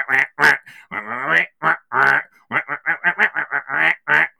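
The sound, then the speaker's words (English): A voice imitates duck quacking as a background comedy soundtrack in a TV show's introduction: a quick run of nasal, honking quacks in an uneven comic rhythm, some drawn out and some clipped short, loud. “At which point it cuts to two South Korean airport workers, supported by a background quacking comedy soundtrack, sort of going...”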